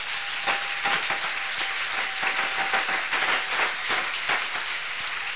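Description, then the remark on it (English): An audience claps for the Lord. Many hands overlap into a dense, sustained patter with occasional sharper accents, fairly loud throughout and with no voices. “Let's clap for the Lord.”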